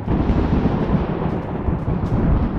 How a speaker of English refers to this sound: Warden, for his part, conjures a powerful lightning storm.